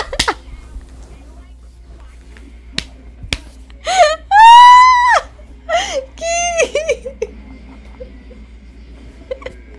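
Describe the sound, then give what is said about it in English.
A voice imitates geese honking: a few nasal, strained honks in quick bursts, one long and loud, after a couple of sharp clicks, with no other talking. “Geese.”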